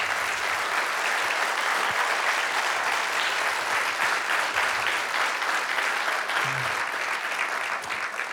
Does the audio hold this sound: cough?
no